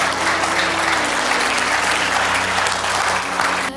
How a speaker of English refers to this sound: Come on up here really quick. Give them a hand as they come.